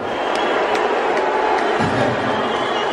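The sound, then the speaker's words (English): A large audience at a Dave Chappelle show in San Francisco roars with dense, continuous cheering as Elon Musk is brought on stage, and partway through a lower, sustained booing swells underneath, both loud and steady for the full three seconds with no distinct speech. “Cheers and booze, I see.”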